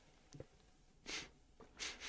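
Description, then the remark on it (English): Several quick, airy sniffs in a quiet space, coming in short bursts of hissy breath with brief pauses between them and no one talking. “Nothing but silence and you sniffling away.”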